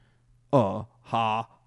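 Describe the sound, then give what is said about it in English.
Two short buzzing telephone ring tones, evenly spaced, come through a phone speaker over a faint steady hum, as an outgoing call placed from the caller's own phone rings on the other end. “I called him on my own phone.”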